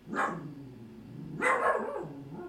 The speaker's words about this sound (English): My dog is just sitting out the window barking at a thing. Ain't that fun? Or he's agreeing with me. I'm gonna say that he's agreeing with me.